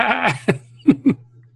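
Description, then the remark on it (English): A sheep bleats once, a wavering drawn-out cry, then gives three short, clipped bleats in quick succession, fairly loud with no talking. “A lot of sheep on board.”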